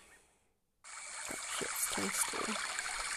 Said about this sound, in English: Oh, that was a dramatic change. I don't know if I want waterfall right now, y'all. Let's change that.